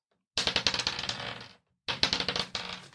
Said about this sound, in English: Can you also roll the encounter dice?